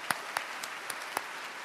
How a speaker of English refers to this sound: But today, I want to give a very special round of applause. Please join me in thanking KPLU for all of their excellent, excellent work over the years.